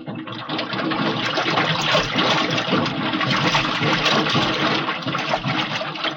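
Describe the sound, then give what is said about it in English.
Water rushes into an airlock as a diver fills the lock, in a steady, loud, churning gush that swells within the first half second and holds unbroken to the end, with no voices. “Okay, I'm going to fill the lock.”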